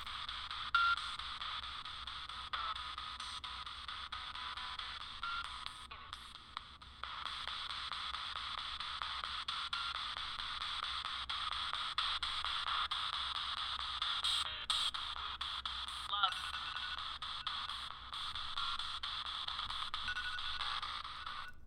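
Steady, hissing radio static from a spirit box sweeping through stations, broken by quick choppy dropouts and brief flickers of tone. It runs unbroken for about twenty seconds with no clear voices.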